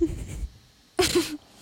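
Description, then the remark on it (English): A dog snores in two rough, raspy breaths about a second apart, each a low throaty rattle mixed with breathy hiss, with a short quiet gap between them. “My dog is snoring so loud. I hear it.”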